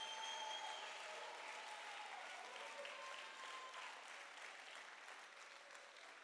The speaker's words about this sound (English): If you believe you can win it, you ought to clap your hands, and you ought to give God a shout with your voice.